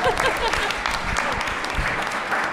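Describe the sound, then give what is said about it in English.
A round of audience applause, dense steady clapping from many hands at a fairly loud level, with no voices standing out above it. “So the trenches, which requires a round of applause.”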